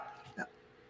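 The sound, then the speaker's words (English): A single short, sharp yap from a puppy, one quick bark standing out briefly against a quiet background. “And we're being joined by someone's puppy during this episode as well.”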